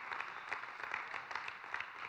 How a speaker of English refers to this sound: Right now, come on, you ought to just clap your hands and call it in.